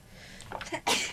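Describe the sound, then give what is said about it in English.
A single sharp human sneeze bursts out after a brief building inhale, loud and breathy with a hissy spray of noise at the end. “All right, I feel like I'm going to sneeze, though, and I'm going to just ride just this hit out.”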